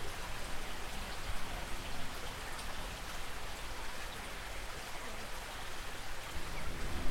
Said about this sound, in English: When you come through the tunnel, the sound of the river always hits you.